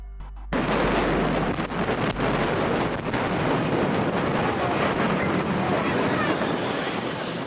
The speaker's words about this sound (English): First responders had no idea just how much SE Fireworks was storing. At just before 2:30 p.m., the first of two massive explosions rocked the area.